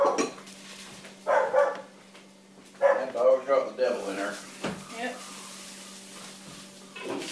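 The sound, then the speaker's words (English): A female dog barks in a couple of short bursts, a few sharp, moderately loud yaps, with a low steady hum and faint voices in the background. “She has peed and barked on many occasions.”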